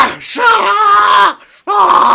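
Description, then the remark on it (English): A character whose head is off lets out a loud, drawn-out scream lasting over a second, breaks off briefly, then starts screaming again, strained with no other voices. “How is he still screaming with his head off?”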